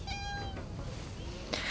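A male cat that has just jumped onto a person's lap gives a single short, tonal meow, trailing off quickly, followed by a brief rustling burst against a low background hum.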